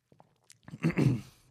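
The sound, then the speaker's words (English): A person drinks water: a few small wet mouth clicks, then a short burst of gulping and swallowing, with no talking. “Drink some water.”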